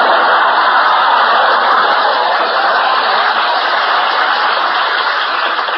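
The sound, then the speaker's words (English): A steady wash of audience applause on a radio program, greeting a mention of Milton Berle, dense and loud, holding at an even level for about six seconds with no voices over it. “To live to see the day Berle gets applause on this program.”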